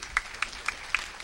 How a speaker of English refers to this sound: Praise God. Let's give them a good hand. Amen.